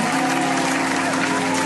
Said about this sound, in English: Matter of fact, man, let's get some applause, man. Let's get some fucking vibes in here.